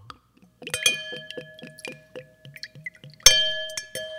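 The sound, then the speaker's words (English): Wine glugs in quick rhythmic pulses as it's poured into a glass, with a bright ringing clink of glass at the start and another sharp clink near the end, with no talking. “It was a very smooth pour.”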